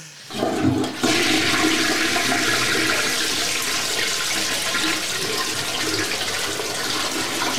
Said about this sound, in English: And, at the end of the toilet flushing, it made that aw sound. And I, so it basically, it sounded like this.